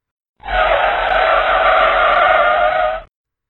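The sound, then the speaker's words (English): A spaceship's air brakes engage: a loud, harsh skidding screech grinds on steadily for about two and a half seconds, starting and stopping abruptly, with no voices around it. “I killed Thrust and punched the air brakes.”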